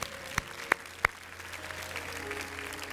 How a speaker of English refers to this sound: I like the way you clap real cute. That was cute. That was just wonderful.